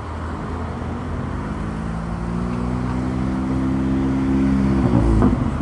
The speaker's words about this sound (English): Oh, no, it's not a bike. It's this pimped out piece of shit. I wish I could take a picture of it. Unnecessarily loud vehicle.